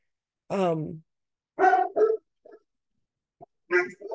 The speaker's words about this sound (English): Dogs.